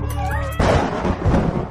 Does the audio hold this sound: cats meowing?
yes